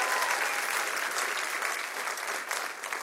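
A church crowd claps and cheers for the church's location in Brussels, Belgium, in a dense, steady roar of applause that holds at an even, loud level for about three seconds without letting up.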